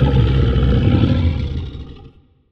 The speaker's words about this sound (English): Maybe next time, as Boris the Boar bellowed into the jungle of the island.